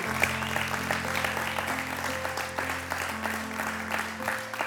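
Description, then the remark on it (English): An audience gives Jesus a mighty clap in the morning after a prayer, a dense wash of many hands with a sustained organ-like hum beneath, holding at an even loud level throughout. “Can we give Jesus a mighty clap this morning?”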